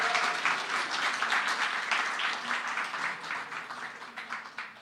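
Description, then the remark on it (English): An audience applauds steadily to encourage a preacher, a dense wash of many hands clapping that holds fairly loud for a few seconds before gradually thinning and fading toward the end. “So again, if you can encourage him, give him another hand of applause.”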